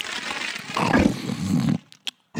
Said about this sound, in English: You just got bit by that wolf.